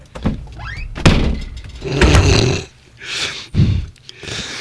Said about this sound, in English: Hey, where'd the door closing go? There it is.